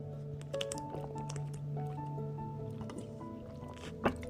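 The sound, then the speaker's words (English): Someone drinks, with wet sloshing and gulping sounds running through the moment and a sharper swallow near the end; no one speaks. “I am replenishing my fluids.”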